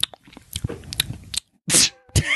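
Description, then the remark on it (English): Wet chewing and mouth smacking on a chewy Starburst candy, a run of small sticky clicks followed by two louder, squelching bursts near the end, with no talking. “You're chewing on a Starburst.”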